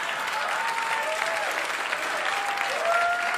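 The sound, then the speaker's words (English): A crowd applauds steadily and loudly throughout, with a few high, sliding Arsenio Hall-style whoops rising above the clapping partway through and again near the end. “And judging by your applause and your weird Arsenio Hall whoop that you just did, judging by that, that means a lot of you in here do that shit, right?”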